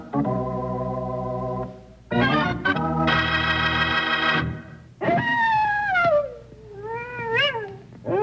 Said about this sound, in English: That coyote's either got a stomach ache or he's hungry.